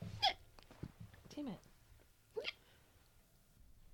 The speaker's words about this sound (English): Are you okay? No, I have the hiccups. I'm trying not to hiccup.